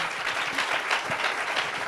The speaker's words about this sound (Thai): ก็ขอเสียงปรบมือให้กับพี่นิดหน่อยหน่อยค่ะ